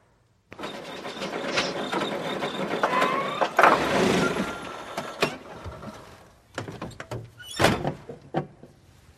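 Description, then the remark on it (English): A car rolls in, pulling into a home driveway with a rumbling mechanical sound, followed by creaks and a few solid thunks like a door shutting, with no one talking. “we're going to watch a clip right now with him getting home and pulling into the driveway”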